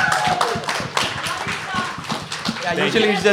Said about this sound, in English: first of all, it's so awesome to have everyone here in one place while we're doing this. Can we, like, shout out the audience and clap for them? Is that okay? Yeah. Woo!